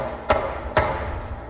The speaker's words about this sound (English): A loud knock resounded through the house.